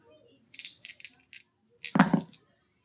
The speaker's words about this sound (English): All right, so roll your four exhaustion dice.